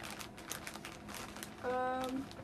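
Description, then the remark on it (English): Stickers, including mushroom and flower stickers, pour out onto a bed in a soft, steady patter of crinkly plastic rustles, and a short hummed voice tone rises briefly near the end. “I'm pouring them out on my bed.”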